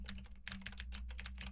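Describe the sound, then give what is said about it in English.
Fast, steady typing on a mechanical keyboard with clicky Gateron blue switches, about 4 feet from a Soyuz 1973 microphone: a quick run of sharp, crisp keystrokes, fairly quiet, over a low constant hum with no voices. “Now I am typing on a keyboard with Gateron blue switches to see how much of my voice versus how much of the keyboard it picks up.”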